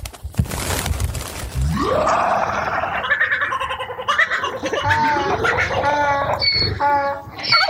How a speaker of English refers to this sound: Who let me have sound effects? Amazing. Every single animal in the world just came to Log's aid, somehow aware of the grave injustice he is nobly suffering.